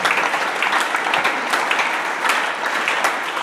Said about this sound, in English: Preach with me. If you are not clapping, you are not in the church.